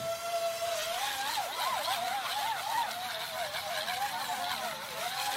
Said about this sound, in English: Let me show you this video. This weird looking drone is about to have a motor failure.